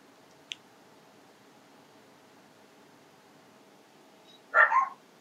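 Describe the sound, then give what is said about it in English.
After several seconds of quiet hiss and one faint click, a puppy lets out a quick pair of loud yaps near the end. “Hi, puppies.”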